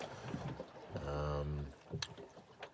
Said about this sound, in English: Day 6 has finally gotten itself going for us, and we're hitting the oars hard and trying to move ourselves a little bit further along.